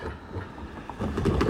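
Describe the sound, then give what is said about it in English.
A car rolls by over railroad tracks: a low, steady road rumble that swells near the end with a few rattling thumps as the wheels cross the rails. “So right there, you heard a car driving by, going over the railroad tracks.”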